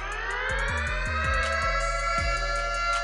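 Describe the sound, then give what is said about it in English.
A loud, sustained siren sound effect with a dense, buzzing harmonic tone that rises slightly, layered over rhythmic low thumps and pulses throughout, with no talking. “I'm hitting the siren.”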